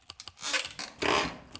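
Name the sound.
typing on a keyboard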